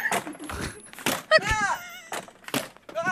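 An office door is kicked open with a few heavy, cracking thuds in quick succession, followed by a high, wavering scream from the man sitting in the office.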